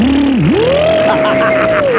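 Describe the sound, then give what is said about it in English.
A voice imitates a blender with a loud, continuous buzzing hum. It dips briefly, then climbs to a higher pitch and holds there, like a motor speeding up. “All that's happening right now, do blender again more.”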